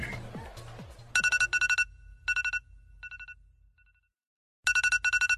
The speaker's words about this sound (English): turn your fucking alarm off.